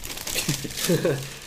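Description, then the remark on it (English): Brown, square cardboard record packaging crinkles and crackles as it is handled in front of a microphone, a busy scratchy rustle lasting about a second and a half, with a brief voiced murmur from a person underneath. “It's a brown, very square card like thing, possibly in the shape of a record. And it makes a noise, good noise on this microphone.”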